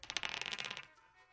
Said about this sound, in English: Now, normally it's 15, but we let you roll the dice. Whatever you roll, we'll take off the number 15. That will be your handicap for today. If you will pick up the dice, please, and get set and roll.